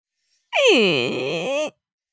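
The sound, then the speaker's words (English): A voice imitates a creaking door, the door down into the Cavern of Lies: a loud, strained groan that starts high, sweeps down and wavers in pitch for about a second before cutting off abruptly. “And having said that, then let's head down into the Cavern of Lies. Ah, yes. Yeah, I'll do the door.”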